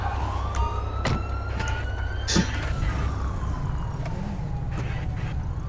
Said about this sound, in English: Turn your siren off